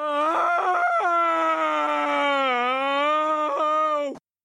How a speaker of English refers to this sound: It's quite the scream for only having to spend time with your family, but it is Homer after all. The fact that that scream is so strange, it did get a chuckle out of me.